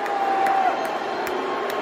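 A large crowd roars in a steady, sustained wash of booing as Elon Musk, introduced as the richest man in the world, raises his arms on stage, while one person claps slowly and unevenly near the camera, four or so sharp claps cutting through the noise.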